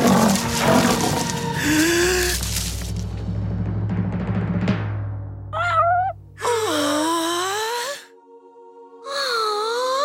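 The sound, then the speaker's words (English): A baby lion cub roars: a harsh, loud opening growl over a low rumble, then a few high, wavering moaning cries separated by short pauses. “It's just a baby lion cub.”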